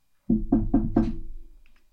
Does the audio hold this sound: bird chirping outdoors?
no